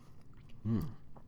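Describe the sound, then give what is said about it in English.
A single short sip of coffee from a cup, a quick wet slurp lasting a fraction of a second against quiet background, with no talking. “Excuse me, coffee sip.”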